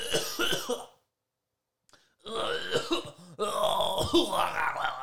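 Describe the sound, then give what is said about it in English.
Harsh, raspy coughing and throat clearing from someone with something stuck in their throat come in loud bursts: a short bout, about a second of silence, then two longer, strained stretches of hacking and gravelly clearing with no words spoken. “I got something stuck in my throat.”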